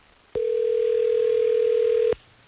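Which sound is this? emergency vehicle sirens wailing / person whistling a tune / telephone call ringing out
telephone call ringing out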